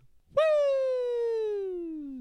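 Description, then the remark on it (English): A single sustained vocal "woo" starts abruptly and glides steadily downward in pitch for about two seconds, a voice imitating a falling slide whistle with clear, rich harmonics. “That's your woo? It's like a slide whistle.”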